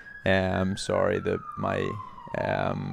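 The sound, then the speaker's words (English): An emergency vehicle siren wails steadily on a big-city street, its tone slowly sliding lower as it passes, while a person's voice comes and goes in short bursts over it. “You get a lot of, like, fire brigades, and it's kind of like in the movies, like police cars.”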